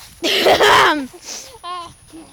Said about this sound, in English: Sorry if I cough. He's not gonna cough. He's faking it.